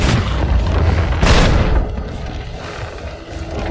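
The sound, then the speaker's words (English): Heavy ship cannon booms from a video game, fired at an enemy ship, a deep thunderous blast with a second sharp report around the middle, followed by a lingering rumbling wash of noise as the shots fade out. “I have to shoot the mast? Now just shoot below their water line if you can.”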